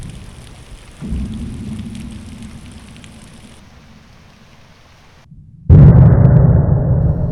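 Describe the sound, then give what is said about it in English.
Steady hiss of heavy rain with a low rolling rumble, then a sudden loud thunder crash bursts in near the end and keeps roaring under the downpour. “Then came the devastating stroke of lightning, which shook the whole mountain, lit the darkest crypts of the hoary grove, and splintered the patriarch of the twisted trees.”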